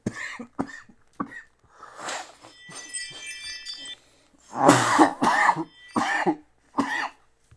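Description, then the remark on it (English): A person who has had a cough for about two weeks, not COVID, coughs repeatedly, starting with small throat-clearing hacks and building to several loud, harsh coughs in a burst, with brief pauses between fits. “Excuse me, I've had a cough for like 2 weeks.”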